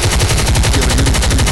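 Rapid, sustained machine gun fire rattles out in a dense, continuous burst of sharp reports with heavy low-end thumps, loud and steady for the whole stretch with no voices.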